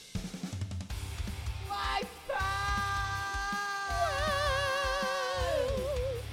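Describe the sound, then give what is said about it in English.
A long, loud scream in the intro jingle of a quiz round rises and holds over a thumping musical backing, then wavers with a warbling vibrato before trailing off at the end. “It's because it screams already.”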